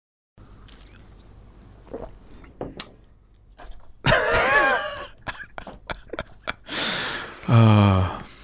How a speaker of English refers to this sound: What, that slurping coffee?